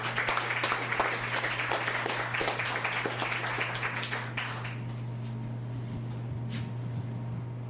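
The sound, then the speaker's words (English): An audience at a poetry and jazz performance gives a performer another round of applause, a burst of dense, crackling clapping that carries on for several seconds, then quickly dies away, leaving only a low, steady hum. “As we bring up Lyle Merriam, let's give Bob McKenzie another hand.”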